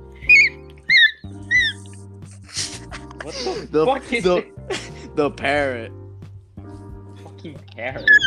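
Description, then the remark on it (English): A parrot lets out several shrill, high squawks in quick bursts, loudest at the start and again near the end, with busier chattering calls in between over a low steady hum. “What the fuck is the parrot? Fucking parrot.”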